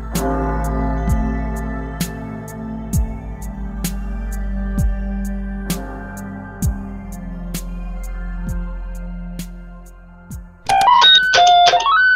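A deep bell tolls around a dozen times to mark midnight, in slow, steady strikes, each ringing out into the next, before a short bright chiming flourish ends it. No one speaks.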